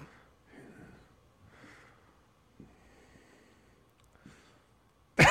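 Heavy, breathy inhales and exhales right up against the microphone, about four slow cycles with a snorting, gasping quality, ending in a sudden loud burst.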